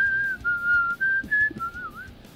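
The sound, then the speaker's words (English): A person whistles a thin, wavering melody in a slow, mournful way, mimicking a tiny sad violin, with a brief upward slide near the end and some faint background noise. “That violin sounds like a whistle, but we're rating this out of 5.”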